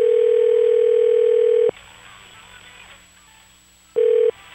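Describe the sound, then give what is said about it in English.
A steady, loud phone dial tone hums for over a second as a call is placed to the OWC Song of the Year grand prize winners, cuts off into quiet background murmur, then a short burst of the same tone returns before stopping. “Should we call the grand prize winner or winners plural”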